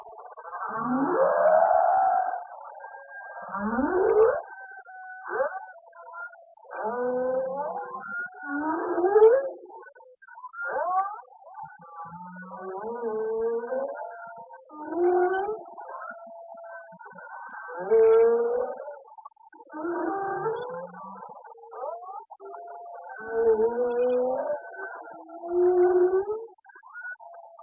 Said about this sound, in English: That was the Tonga whale song, and you're listening to Orange Juice for the Ears.